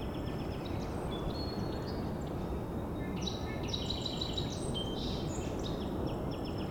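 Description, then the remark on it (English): Faint, high ticking bird calls flicker in quick clusters overhead, some doubling up around the middle, set against a steady rumbling wash of background noise with no voices. “Hearing a faint ticking call flying over. Wondering if maybe a crossbill from the type of call I was hearing.”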